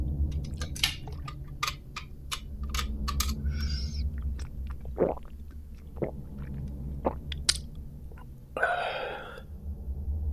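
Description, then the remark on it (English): Wet gulping and swallowing of a large swig from a metal hip flask after its cap is unscrewed, with sharp clicky mouth noises, a brief metallic rattle, and a breathy exhale near the end, all over a steady low hum. A man drinks in the ringing chamber at the base of a church tower. “Unscrewing the cap, he gulps down a large swig of Dutch courage.”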